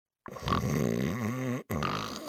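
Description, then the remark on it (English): Loud, rumbling, harsh snoring voiced by a person imitating a snore: one long drawn-out snore followed almost at once by a second that carries on to the end. “That snoring.”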